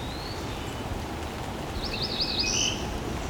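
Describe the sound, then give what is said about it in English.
A cerulean warbler sings a quick, buzzy run of high notes rising at the end, over a steady hiss of rain-like background noise. “Cerulean Warbler”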